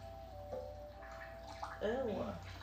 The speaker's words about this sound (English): Wash the grated sweet potatoes to release the starch.